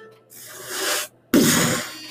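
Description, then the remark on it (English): A sliding door opens with a swelling, airy rush that fades, followed after a short pause by a second abrupt, louder scraping slide that tapers off. No voices. “As it sounds like that sliding door has now opened all the way up.”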